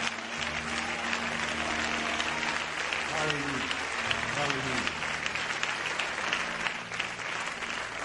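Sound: audience clapping hands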